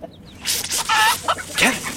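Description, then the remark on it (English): Chickens escaping from a coop cluck and squawk in a flurry of short, agitated calls, loud, with a burst of noisy flapping or scuffling mixed in. “All the chickens are escaping!”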